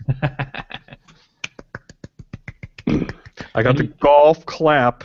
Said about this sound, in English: Applause. I got to put some carts together here so we have some sound effects.